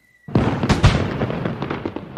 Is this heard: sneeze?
no